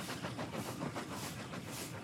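A moving local train from Boston's South Station to Fall River, in 1914, rumbles steadily with a quick, regular clickety-clack of wheels over the rails, continuous, with a hissing wash of noise and no voices.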